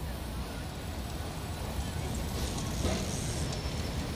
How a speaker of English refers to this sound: We left Callum and Robert straining their necks, open-mouthed, mute with astonishment, as the bus doors hiss shut behind them. The bus pulls away.